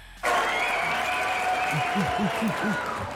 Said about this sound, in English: And I want everybody to give a round of applause from this. Just see everybody, y'all give it up, right? Yeah.